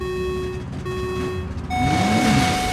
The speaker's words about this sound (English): And the trucks are speeding down the raceway.